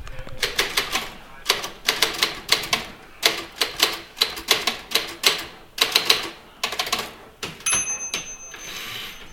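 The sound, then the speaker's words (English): Clattering keystrokes from a manual typewriter sitting on a desk, being demonstrated in a shed full of old working machinery, in quick uneven bursts, fairly loud, ending with a bright ringing bell and a rough carriage-return sweep. “Now, young people today may not be aware that this is a primitive precursor to a laptop computer known as a typewriter, but the older listeners, I'm sure, are very familiar with that sequence of noises.”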